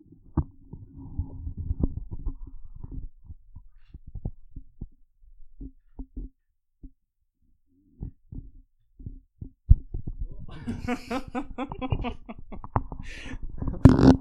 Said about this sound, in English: I was trying to catch her snoring and grumbling, and then she woke up and bumped the mic with her little dog nose.